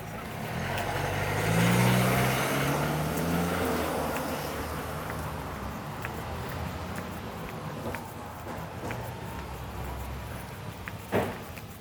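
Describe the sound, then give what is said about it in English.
Steady roar of busy street traffic in London, with a heavy vehicle rumbling past early on, followed by a constant wash of road noise and scattered sharp clicks and knocks. No one speaks. “Sorry, it's noisy again. I didn't realize how noisy London was.”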